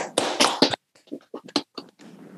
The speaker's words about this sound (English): He's a barista, ladies and gentlemen. He is a barista. Everyone, round of applause